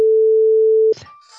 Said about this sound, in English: I'm going to bleep all of this shit out so that I... Don't bleep it out.